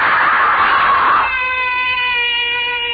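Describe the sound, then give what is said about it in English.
A loud, piercing human scream, harsh and raw at first, then settling into a steady, sustained high-pitched wail that holds for several seconds without any talking. “Why am I screaming?”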